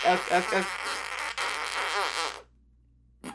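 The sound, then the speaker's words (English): A voice imitates a fart with the mouth, a buzzy, sputtering raspberry that pulses in short bursts for about two seconds, fairly loud, then cuts off with a brief blip after a pause. “Okay, that's just a fart. That's enough. That's just a fart noise.”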